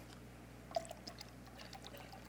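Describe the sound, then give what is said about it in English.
Water pours steadily into a cup for a couple of seconds, a soft continuous trickling with small splashy bursts, fairly quiet, with a low steady hum underneath. “I'll pour some more in here.”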